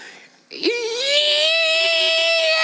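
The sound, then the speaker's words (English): An adult voice imitates a girl's gleeful squeal during a motorcycle ride: a quick upward swoop into a long, loud, sustained high-pitched squeal that holds steady for about two seconds. “And she would just scream and squeal with glee because of the ride.”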